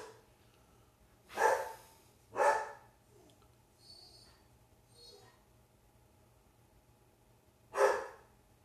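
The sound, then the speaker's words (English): A dog barks three times, two sharp barks close together, then a long pause before a final one, with a few faint, softer noises in between and no talking. “My dog's still barking.”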